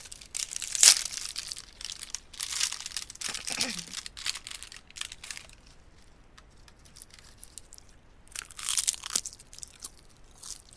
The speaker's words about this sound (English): Okay. I am quite hungry. Okay. I'm opening the package now.